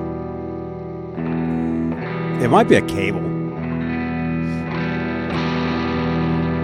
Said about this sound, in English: Actually, let's put some guitar in here. Make it a little easier to deal with that buzzing sound.